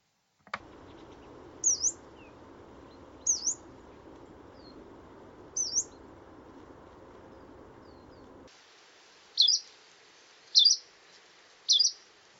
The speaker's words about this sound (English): And the Hume's warbler's call is delivered much faster. Structurally, similar elements are there to the yellow-browed warbler, but because it's delivered so fast, it sounds more like chirrut, chirrut. Chew it.